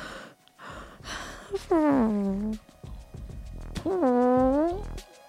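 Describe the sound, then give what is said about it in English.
Two loud mouth-made fart imitations, one by each of two people taking turns, each a buzzy, voiced blurt lasting under a second that slides down in pitch and then lifts slightly, with a short pause between them. “I'll give my fart noise and you give yours, okay?”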